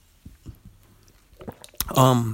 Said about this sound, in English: This is kind of random, but I guess if I pick up my Red Robin water bottle and take a sip out of it, it won't make it that random. Here we go. Allow me to take a sip real quick.